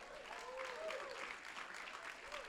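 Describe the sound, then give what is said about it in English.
An audience claps for the word of God, a dense wash of many hands sustained for a few seconds, with a few voices faintly calling out beneath the applause. “Come on, why don't you clap your hands for the word of God.”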